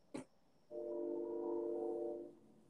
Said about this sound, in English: Hear that train? That train?